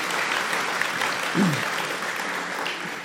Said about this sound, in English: If you want to applaud, you can do that.